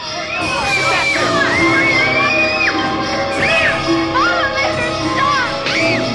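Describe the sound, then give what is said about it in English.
Several children scream and shriek at once in a loud, continuous, chaotic din, high-pitched wails rising and falling over a dense background of overlapping young voices. “Corinne, you will stop those children screaming this very moment.”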